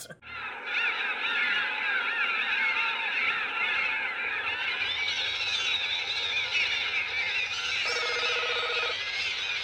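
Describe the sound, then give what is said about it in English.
A loud, continuous cacophony of harsh honking bird calls, layered and warbling at high pitch for nearly ten seconds, with a brief buzzy tone cutting in near the end; a bird call frequency test from a scene in the Japanese version where Professor Hayashida tests bird call frequencies. “In the Japanese version, we get a scene where Professor Hayashida is testing bird call frequencies, and it's a very bad sound.”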